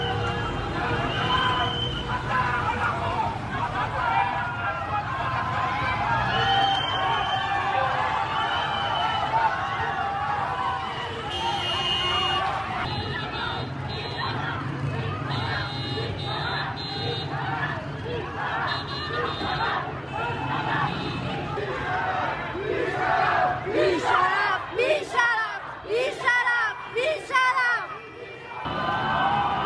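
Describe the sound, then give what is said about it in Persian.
A dense, noisy crowd fills the scene with overlapping voices and chanting, while car horns honk repeatedly over it, growing more rhythmic and insistent toward the end. This is a popular protest with car horns at Argentina Square, where a large crowd gathered in front of Kasra Hospital after Mahsa Amini's hospital photo was published. “اعتراض مردمی با بوق میدان آرژانتین بیمارستان کسرا.”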